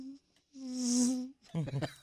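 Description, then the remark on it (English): A thin, whining mosquito buzz swells up for about a second, steady in pitch, then fades out as a person starts talking right after it. “I didn't really know what a mosquito sounded like until now.”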